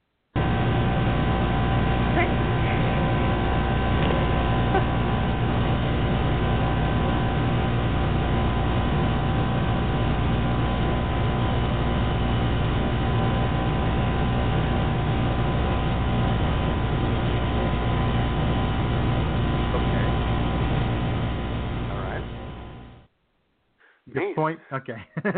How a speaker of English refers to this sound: Okay. Yeah. I put the microphone right there by the wall, but you get the point. That buzzing sound. That buzzing sound.